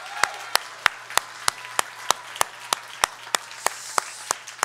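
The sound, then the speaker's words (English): A church audience at a Sunday worship service claps together in steady unison, sharp crisp claps landing on a regular beat roughly three times a second, with a faint low hum underneath and no talking. “Wait for it, and then we'll clap.”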